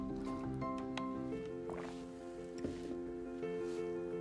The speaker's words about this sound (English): And then another habit to have that is super important, internally speaking, is, let me drink my water, hold on.